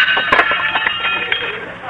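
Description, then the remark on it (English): Silverware clatters after being dropped: a quick series of bright metallic clinks and rattles with a ringing, tinny tone over a couple of seconds, fairly loud against a thin background hiss. “Oh, you dropped your silverware”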